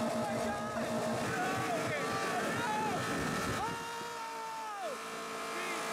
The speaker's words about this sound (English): They're doing burnouts in this car. Jesus Christ, dude. Now they are pinning the gas pedal down. That's definitely it. And now they have it running. Look at the exhaust.